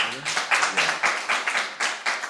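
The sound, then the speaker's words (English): A short burst of audience applause: a modest crowd clapping in a steady, slightly rhythmic patter, with a faint voice briefly audible underneath at the start. The audience claps to show how many of them know Jill Bernard. “And it's like, by applause, how many people know Jill Bernard?”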